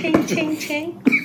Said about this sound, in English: Got me coughing on my... Coughing on my old fashioned over here.